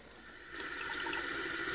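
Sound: tap water running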